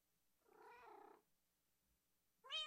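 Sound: cat meowing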